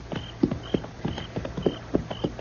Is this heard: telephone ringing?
no